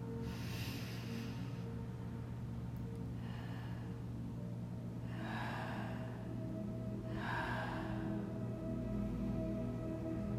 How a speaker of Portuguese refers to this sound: E agora, respirando, nós vamos fazer uma respiração em três tempos. Então, nós vamos puxar pelo nariz e ao soltar pela boca em três tempos.